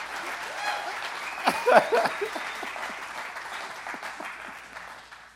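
A crowd applauds steadily with dense, rapid clapping, swelling briefly near the middle with a few voices and light laughter, then tapering off toward the end.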